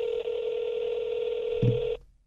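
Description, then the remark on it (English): A phone ringing through a speakerphone: one long, steady electronic ring tone that holds for about two seconds and then cuts off abruptly, slightly tinny and clear. “Does he know, does he know you well enough to answer the phone?”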